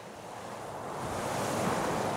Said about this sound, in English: Although the town of Homer is in southern Alaska, no one would ever think of it as southern on this midwinter day. The temperature is well below freezing, and flurries of snow dance in the blustery wind.